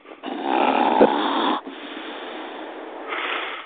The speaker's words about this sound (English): Snore louder,